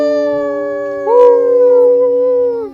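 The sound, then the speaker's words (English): Several voices howl together like wolves, a sustained, steady chorus that swells and rises slightly in pitch partway through before trailing off, loud with no talking. “Everyone, howl to the moon and say, have a wonderful night.”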